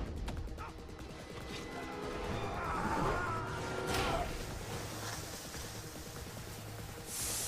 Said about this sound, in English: Also, very, very random aside, are you quite close to your mic? Because I think I can hear you breathing quite loudly. Oh, I'm close to my headpiece, but not to the snowball.